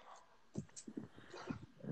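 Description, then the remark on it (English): A dog barks in a few short, yappy bursts spread over a couple of seconds, moderately loud, with brief pauses between the yips. “Whose dog?”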